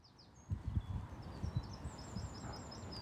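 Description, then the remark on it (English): Faint, high birdsong of repeated short chirps runs through the whole clip at Bosham, with a distant gunshot, over irregular low thuds and rustling. “Well, I hope you can hear that lovely bird song, distant gunshot.”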